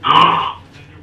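A single harsh, raspy cough bursts out loudly for about half a second, then trails off into quiet breathy noise.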